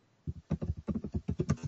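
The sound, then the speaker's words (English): Quick, steady run of computer keyboard keystrokes while looking up all-time worldwide box office figures on Box Office Mojo, about ten sharp clicks in under two seconds, moderately loud with no voices. “Just rapid typing.”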